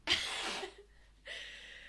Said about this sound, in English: I'm just going to blow my nose as well. Oh, so. Lovely.